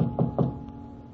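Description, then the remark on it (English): A short series of three knocks on a hotel room door, evenly spaced, with a dull wooden thud, followed by quiet room tone. “She does not answer the door.”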